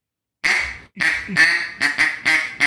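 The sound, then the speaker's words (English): A duck call blown in a flat quack with no pressure, a series of about six flat, loose quacks, a longer first note followed by quicker, evenly spaced ones, loud with no talking. “Just like with no pressure in it, it's just kind of like a loose quack, right?”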